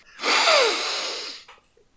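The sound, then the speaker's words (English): A single long, airy sniff of the air drawn in through the nose, fairly loud, lasting over a second before trailing off into quiet with no talking. “You see the cannonballs around you, and then you take a nice long sniff of the air.”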